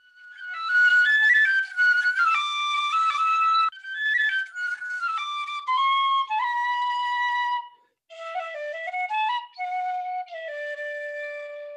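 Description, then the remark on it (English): A piccolo plays a lively melodic run alone, bright, with quick note changes, a few short pauses, and a gentle descent into lower, sustained notes toward the end. “That's the death whistle. The piccolo.”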